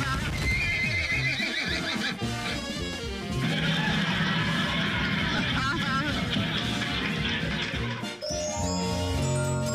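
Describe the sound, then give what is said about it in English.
A horse neighs loudly and repeatedly while hooves clip-clop steadily underneath, continuous for the whole stretch, with some busy background noise mixed in. “I know you're excited, but please, sir, hold your horses. They're too heavy.”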